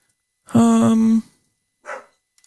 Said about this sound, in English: And there goes my dogs again, of course. Is that really loud for you guys? I hope not.